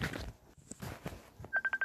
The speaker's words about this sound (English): Oh, wait, I'm being called.